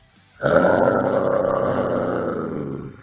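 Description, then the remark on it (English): A person voices a long, rough, sustained vampire growl, loud and steady for almost three seconds, with a gravelly rasp and a low rumbling pitch, without any words. “I'm glad that we could start on the growl. I had to start on the growl.”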